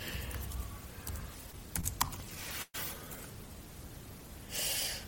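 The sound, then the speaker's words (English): Soft, irregular key presses on a laptop keyboard as the laptop is being unlocked, a quick flurry of taps with a brief pause in the middle, set against a faint room hiss. “I distinctively heard pressing of keys. No, I was unlocking my computer, my laptop.”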